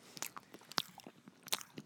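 Close-up crunchy chewing of a chocolate chunk cookie, with a few sharp bites and wet mastication sounds in quick irregular succession, loud and intimate right at the microphone, no talking.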